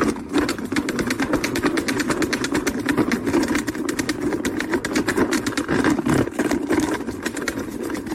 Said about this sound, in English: Isn't that a salad spinner?